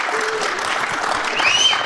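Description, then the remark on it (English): An audience of thousands applauds steadily as people on stage are introduced, many hands clapping in a dense, continuous patter that swells slightly toward the end, with a brief high whistle or cheer rising near the close. “You can clap.”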